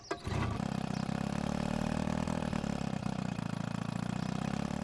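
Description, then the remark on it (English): A small pull-start outboard motor on a boat just put in a lake catches after a couple of tugs on the ripcord and settles into a steady, loud, throbbing idle, running without pause. No voices are heard. “We back the boat down the launch, get her in the water, give a couple tugs on the ripcord, and we're off.”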